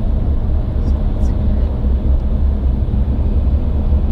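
Steady low rumble of road noise inside a car driving in Miami, continuous and fairly loud, with a dull droning hum filling the whole stretch and no distinct events.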